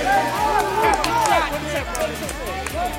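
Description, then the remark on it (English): A dense, lively crowd fills the scene, many voices overlapping in continuous chatter and cheering, steady throughout without any single voice standing out. “Or maybe this crowd.”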